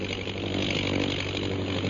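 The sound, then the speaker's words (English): A fighting plane with a mounted machine gun circles overhead, its engine droning steadily, a continuous buzzing roar with low humming undertones that holds an even loudness throughout, with no voices. “Jim, the plane's circling.”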